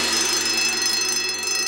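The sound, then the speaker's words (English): A loud sound-activated alarm goes off, a harsh, shrill ringing that stays steady and unbroken throughout, piercing, with no voices over it. “And if you don't do it quietly enough, it triggers the sound-activated alarm. Cue alarm.”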